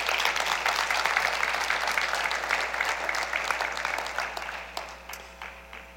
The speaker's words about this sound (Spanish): Podemos darle un aplauso al Señor.